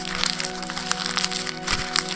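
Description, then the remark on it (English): A piece of parchment paper is crumpled into a ball, giving a dense run of sharp, irregular crackles and crinkles lasting about two seconds over a steady low tonal hum. “He gets out a piece of parchment paper. He crumples it up into a ball.”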